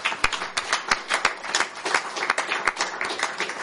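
A steady round of applause from a group at a comedy show for the event's organiser, many overlapping hand claps forming a dense, crackling patter with a few sharper individual claps standing out, sustained at an even level throughout.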